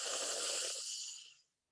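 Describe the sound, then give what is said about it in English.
A slow, deep breath drawn in from the tummy as a relaxation exercise, an airy, hissing inhale that lasts over a second and gradually fades out. No one is talking. “When she walked into every classroom, she showed kids how to do slow, deep breathing from your tummy.”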